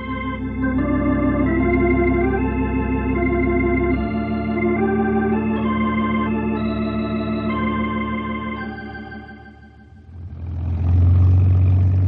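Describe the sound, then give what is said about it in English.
A crop-sprinkling airplane's engine runs steadily on the ground with a loud, droning hum, then shifts near the end into a rougher, louder roar with a rush of noise. “Slim will cut the engine in just a minute.”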